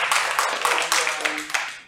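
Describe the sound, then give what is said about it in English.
A church audience claps to show appreciation for a fellow church member, a dense, steady patter of many hands with a few sharper accents, moderately loud, and faint voices murmuring underneath. “You can clap, that's all right.”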